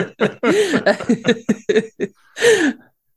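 A man coughs in a rapid string of short, rough bursts, pauses briefly, then lets out one longer, strained cough to finish.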